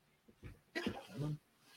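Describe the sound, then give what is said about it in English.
A male dog lets out a couple of soft, short whines and grunts amid quiet shuffling as it sits down and settles, with no talking. “As I write the shit down and my dog joins the show as always.”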